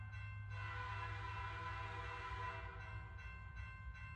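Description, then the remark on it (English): The George Bush 4141 locomotive rumbles steadily, its loud, multi-tone horn blaring in one long blast and then a few shorter honks over the low, continuous engine roar. No voices. “So the locomotive was, so there's the train, which is all the parts, and the locomotive, which is the thing that was named after.”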